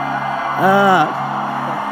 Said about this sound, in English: Somebody is asking, why are they always shouting?